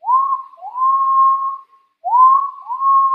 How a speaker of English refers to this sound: Have a little whistle.